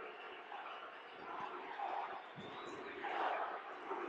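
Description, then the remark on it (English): A large arena crowd at a basketball game chants a player's name together as he shoots three free throws, a dense wash of many voices rising and falling in rhythmic swells, fairly subdued throughout. “Crowd chanting Rubio as he shoots the three free throws.”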